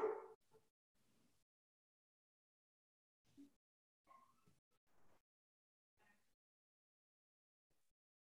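Pet dogs bark in short, scattered bursts: one loud bark right at the start, then a handful of fainter, sporadic yelps separated by quiet pauses, with no talking.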